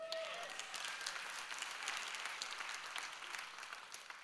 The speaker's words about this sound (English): If you believe that, why do you gripe and complain all the time? See, you should have held that clap back.